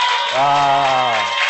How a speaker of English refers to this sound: Oh, clap for Jesus.